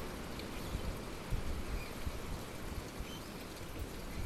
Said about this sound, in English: Reached the point now where we're at the water feature. I'm standing here.